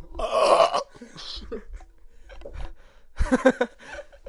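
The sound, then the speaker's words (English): A loud, drawn-out burp rumbles, followed by a short pause and then a second throaty burst, with faint breathy vocal sounds in between. “Just how you went through being caught live on podcast and then you burp.”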